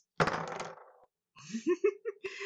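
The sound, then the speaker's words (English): A short clatter of dice tumbling across a hard tabletop for under a second, rolled against a spell DC of 13, followed after a brief pause by a person speaking. “Wait, that's on the right dice.”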